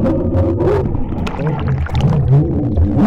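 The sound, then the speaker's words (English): A deep-sea instrument plunges from air into water: a loud, steady churning rumble with bubbly crackles and low groaning tones that rise and fall for about three seconds. “So that was going from the air to the water.”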